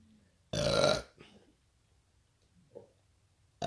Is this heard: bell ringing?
no